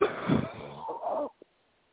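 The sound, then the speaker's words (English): A person takes a rasping, wheezy deep breath that breaks into a rough cough lasting about a second, followed by a brief faint sound and then silence. “Deep breath and cough.”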